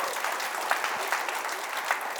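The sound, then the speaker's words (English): A crowd applauds and cheers steadily for the 90 people serving, a dense wash of clapping with a few sharper claps standing out, at moderate level and with no talking over it. “Give all of them a hand and cheer for them.”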